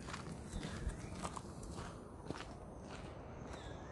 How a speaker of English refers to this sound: Horses.